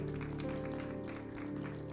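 audience applauding

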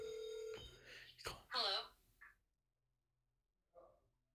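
phone ringing

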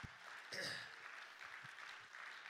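audience clapping hands

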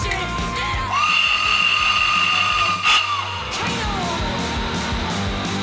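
death whistle being blown

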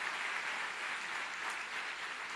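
applause

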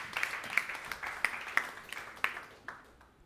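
audience clapping

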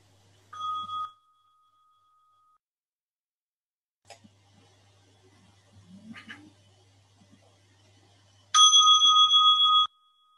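bell being rung

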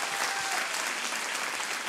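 audience applause

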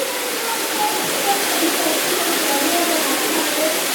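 waterfall

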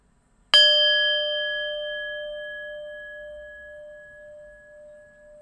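meditation bell rung

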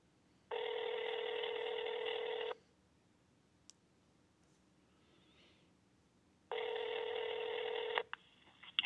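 telephone dialing a number

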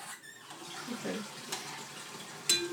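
water running

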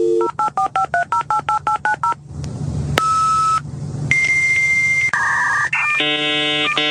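dial-up modem dialing tones

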